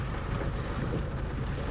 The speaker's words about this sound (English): It's a rainy day. I have my window wipers on.